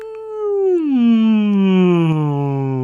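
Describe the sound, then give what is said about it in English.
A person's voice imitates a booming humpback whale call: one long, loud, drawn-out moan that slides down in pitch and holds low and unaccompanied for about three seconds. “Humpback whales, or whales in general, of course, use big booming whale sounds.”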